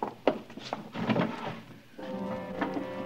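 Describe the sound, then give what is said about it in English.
A wooden drawer holding a single black glove slides open with a few scraping rattles and soft knocks, fairly quiet, followed by a steadier humming tone. “Just one black glove in the drawer.”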